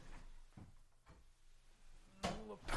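A few soft knocks and clicks from a door being pushed shut, followed by a louder, brief burst of noise as it settles closed, with no talking.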